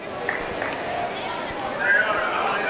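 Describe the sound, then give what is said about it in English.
A basketball is dribbled in the backcourt by Kirsten Bond of South Dearborn during a game against the Tigers. A few dull, irregular bounces are set against a steady crowd murmur with voices. “Kirsten Bond dribbling in the backcourt for South Dearborn.”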